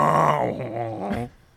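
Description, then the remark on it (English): A man's voice loudly imitates a blaring horn, a sustained low, buzzy honk with strong harmonics that wavers slightly in pitch for over a second before cutting off. “They just didn't have horns like that.”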